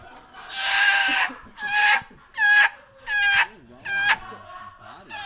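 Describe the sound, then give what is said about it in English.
A man imitates a choking seagull: five loud, strained, raspy squawks in quick succession, each a harsh high cry with a gulping break between, and no other talk over them. “Seagull choking.”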